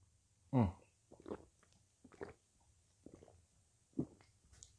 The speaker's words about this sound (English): You know, I had to sip my water.